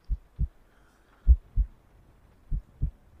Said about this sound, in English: Oh, I can nearly hear your heart thumping from here.